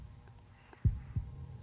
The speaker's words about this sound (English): Okay, anyway, a heartbeat.